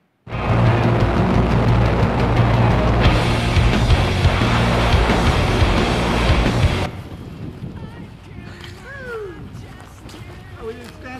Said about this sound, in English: Well, the wind's got us here a little bit. That's fine.